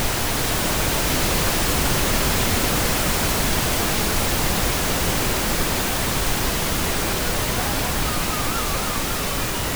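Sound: radio static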